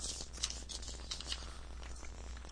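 Crinkling and rustling of stiff paper being unrolled from a tube, a steady stream of crisp, scratchy bursts with a few louder crackles, no voices. The paper is pencil and ballpoint pen layouts of a page from Amazing Spider-Man 140 by Gil Kane.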